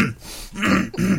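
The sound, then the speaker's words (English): A short burst of throaty coughing, roughly two or three harsh hacks in quick succession, fairly loud with no talking over it. “What are you coughing for?”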